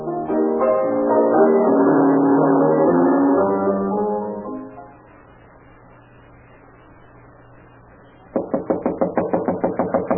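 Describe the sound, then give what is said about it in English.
Loud, rapid pounding on a door by someone demanding it be opened, about a dozen heavy blows in quick succession near the end, following a stretch of sustained musical tones and then a low, quiet hum. “Get up and open this door.”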